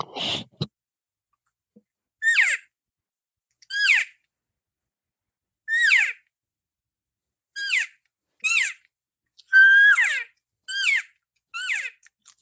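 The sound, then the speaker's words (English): An imitated elk cow mew, repeated about nine times: short, high, nasal calls that slide downward in pitch, each soft and brief, spaced irregularly with silence between and no talking. “Yeah, Just a basic cow mew.”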